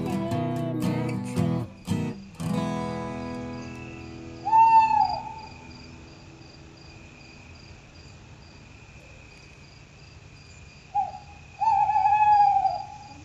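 An owl hoots twice, several seconds apart, with clear wavering calls over a steady background of chirping crickets; a few brief knocking sounds come at the very start.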